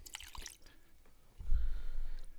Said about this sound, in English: Here, I'm going to do a pour.